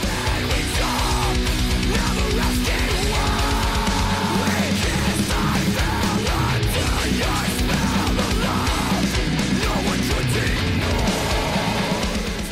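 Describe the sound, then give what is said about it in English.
A loud, dense heavy rock song with screamed vocals over distorted guitars and pounding drums, playing continuously at full volume throughout. “I know that this band doesn't sing. They only scream really loud, so I'm interested to hear this one.”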